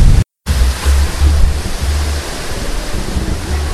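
strong wind blowing

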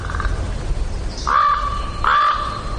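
crow cawing

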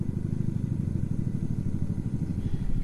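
helicopter flying overhead

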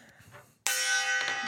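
gong being struck

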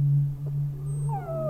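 dog howling

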